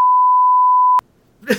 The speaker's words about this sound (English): No, I'm just gonna bleep that, just leave that part in.